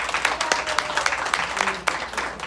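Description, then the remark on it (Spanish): An audience applauds steadily to welcome young girl candidates as they are introduced, many hands clapping together in a dense, crackling wash with a few sharper claps standing out, sustained for a couple of seconds at moderate loudness. “un aplauso, por favor.”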